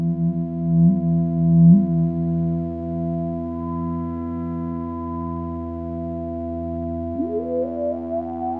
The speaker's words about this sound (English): And this is called a weather warlock. A weather warlock, yeah. This is a weather-controlled drone synth, and by drone I mean a musical drone. It's tuned to an F major chord. It can be tuned to other keys as well, but right now it's tuned to F major.